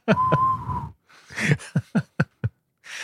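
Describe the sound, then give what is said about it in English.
A voice imitates a man whistling through a hole bitten in his cheek: a thin, wheezy whistle holding one steady note for under a second, then a series of short, breathy puffs and hisses, fairly loud. “He's whistling through a hole.”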